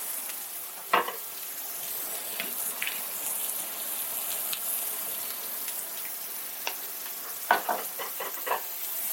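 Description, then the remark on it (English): Burgers sizzle steadily in a pan drizzled with olive oil, making a constant bright hiss broken by sharper crackles and pops, with a cluster of louder spits near the end. No one speaks. “So a drizzle of olive oil to the pan, and now burgers are being added.”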